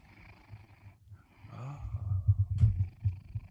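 A male cat purrs at the microphone after being poked with it, having been snoring before, a low rhythmic rumble that starts faint and swells louder midway, pulsing steadily with soft breathy texture and no voices.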